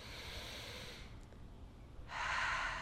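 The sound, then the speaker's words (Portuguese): A deep breath drawn in through the nose, airy, with a brief lull before a louder, rushing stretch of breath near the end. No one speaks. “Respira fundo.”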